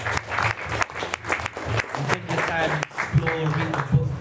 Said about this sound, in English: So thank you guys. Round of applause for yourself as well.